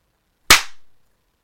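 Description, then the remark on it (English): A single sharp hand clap with a bright, snappy attack and a short decaying tail, heard alone against silence. “But you clap, and then you can sync it.”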